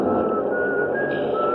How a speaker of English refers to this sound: doors close behind me and everybody in the car is rushing to find a seat. Over the noise, I hear some contented soul whistling.